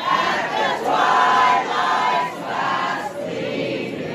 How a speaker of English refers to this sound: So the crowd started singing the national anthem.